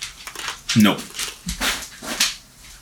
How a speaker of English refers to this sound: What are you doing, Crosby? Even the dog is noisy. What the heck? Even you, Crosby, you're noisy.